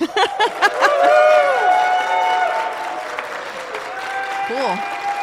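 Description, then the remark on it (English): A crowd applauds steadily throughout, with loud cheers and high-pitched screams and whoops rising above the clapping, full and tapering only slightly toward the end, as an audience votes for a contest winner by applause and screams. “Some sustained applause there. Hear a lot of general chatter.”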